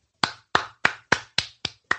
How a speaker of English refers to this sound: That's me clapping.